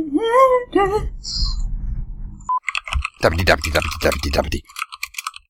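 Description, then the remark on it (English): Loud, rapid keyboard clatter, keys hammered in a dense frantic burst for a couple of seconds, coming after a brief wavering, wailing tone at the start. “You're not typing, you're just smashing your keyboard now.”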